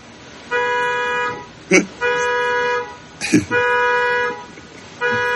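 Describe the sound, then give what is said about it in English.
A car alarm in a parking lot, set off after kids got in the driver's seat, blares steadily in repeated bursts of a bright, buzzing electronic tone, pausing briefly between cycles, with short sounds from people breaking in during the gaps. “See, this is what happens sometimes when the kids get in the driver's seat in the parking lot, and then they don't know how to turn off when they've set a car alarm.”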